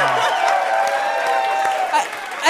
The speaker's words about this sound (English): I've never gotten so much applause for doing so little.